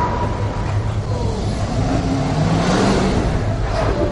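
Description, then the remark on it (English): A car engine revs and accelerates, its pitch climbing steadily over a constant wash of traffic noise; a car plowing into an SUV of President Biden's motorcade at his Delaware campaign headquarters. The motor is moderately loud, with no voices. “President Biden was not hurt when a car plowed into an SUV that was part of his motorcade at his Delaware campaign headquarters.”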